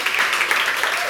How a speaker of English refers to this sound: Can you please give another huge round of applause, please?